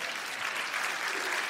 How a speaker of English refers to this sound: First time anybody's ever clapped for me, so I appreciate that as well.